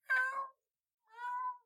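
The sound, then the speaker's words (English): A cat at the end of a shelf meows twice, clear, each meow about half a second long with a brief silent pause between them. No one speaks. “And you go and see kits lining the wall, and at the end of the shelf, you see an actual kit as a cat looks at you.”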